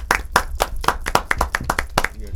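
A small group of people clapping, with sharp, irregular hand claps overlapping in a quick, steady patter that stays fairly loud throughout, with no voices.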